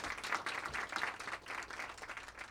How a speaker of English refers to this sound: Thank you. How about one more round of applause